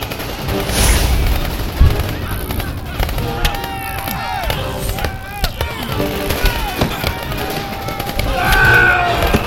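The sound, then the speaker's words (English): Rapid, irregular bursts of gunfire crackle and pop continuously, sharp reports overlapping amid a loud battle din, with voices shouting over the shooting, as troops fire at will at the Green Llama, a lone attacker tearing through their forces. “Keep firing. Keep attacking.”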